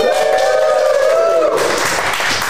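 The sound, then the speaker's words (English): A loud crowd at Boatfest cheers and screams, with high sustained voices at first giving way to a dense, noisy roar of cheering and clapping that carries on steadily to the end. “Look at this screaming crowd.”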